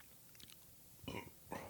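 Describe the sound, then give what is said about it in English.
Two short, quiet burps from someone who has been drinking a can of energy drink come close together, the second smaller than the first, after a few faint clicks and mouth sounds. No one speaks. “Pardon me for all the burping.”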